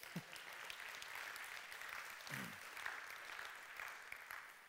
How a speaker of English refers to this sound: Amen. That's a great place to clap right there.